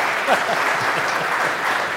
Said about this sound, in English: Round of applause.